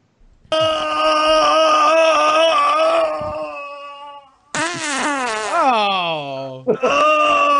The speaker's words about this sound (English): You can tell how much obesity has slopped up your farts, because those were two different levels of farts. I'm assuming it's your weight gain that made the fart change in noise, and not just some sort of damage you've done to your anus over the years